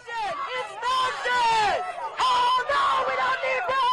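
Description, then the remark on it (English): A loud crowd of thousands of pro-life and pro-choice protesters outside the Supreme Court in Washington, D.C., after a ruling, shouts and chants over each other, raised voices overlapping in a continuous, agitated roar with bursts of yelling throughout. “If you listen here, pro-life and pro-choice protesters.”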